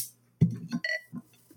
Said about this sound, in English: All right, I'm pouring it into a nice glass here.